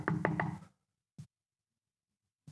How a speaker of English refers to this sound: Seek him. Knock on his door.